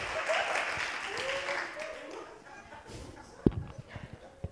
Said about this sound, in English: Can I have some adult kids just clap your hands, because I've lost all the old people. I'm really trying.